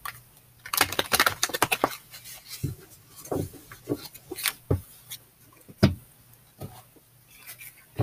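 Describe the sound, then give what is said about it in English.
A deck of tarot cards being shuffled: a quick burst of riffling flutters early on, then scattered soft slaps and brushing taps of cards being handled, with no talking. “Let me go ahead and shuffle one more time.”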